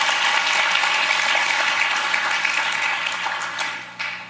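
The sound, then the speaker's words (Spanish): A church audience applauds the Lord during a sermon, a dense crackle of many hands clapping together that holds strong, then thins and fades toward the end. No one speaks over it. “Denle aplauso al Señor si se lo va a dar.”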